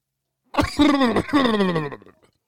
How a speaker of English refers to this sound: Coughing all over this fucking mic.